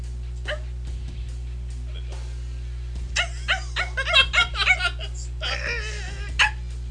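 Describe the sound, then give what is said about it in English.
A person imitates a dog with a run of short whimpering yips and little barks, clustered together, over a steady low hum. “Other than random dog sounds.”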